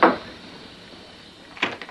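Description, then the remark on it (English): Sharp knocking on a house door at night by a little singing group from the Church of God: one solid rap at the start, then a quick cluster of knocks near the end, moderately loud with no voices. “And a little singing group from the Church of God in my hometown knocked on our door one night.”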